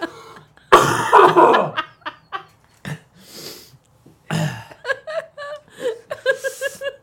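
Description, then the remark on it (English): A harsh burst of coughing from a person who has given themselves a real cough by fake coughing, then a few quieter coughs and throaty, breathy sounds trailing into short bursts of chuckling laughter. No one speaks. “I've actually got a cough. I've fake coughed so much I'm giving myself a cough.”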